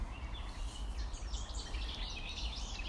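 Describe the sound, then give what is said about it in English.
Light birdsong chirps and trills continuously by a lake over a soft, steady outdoor rumble, with no voices present. “Listening to the bird song.”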